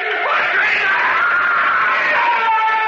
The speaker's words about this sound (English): He began to scream. But then, after a while, he was silent.